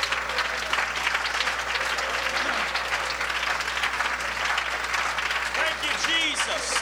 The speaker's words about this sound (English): Oh, in your name, Jesus, can we clap our hands unto God?